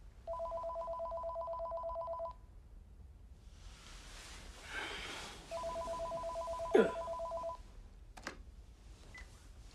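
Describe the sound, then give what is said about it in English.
A telephone rings in two long electronic bursts, each a steady warbling trill of about two seconds, separated by a pause with faint rustling noise. No one speaks. “So in the present, Jack is getting ominous phone calls.”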